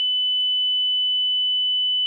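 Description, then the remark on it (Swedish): A steady, pure high-pitched test tone sounds continuously at even loudness for about two seconds, with nothing else audible around it. “Vi har valen 1K, 700, 3K, 4K. Fan, det är nog 3K. Ja, det är.”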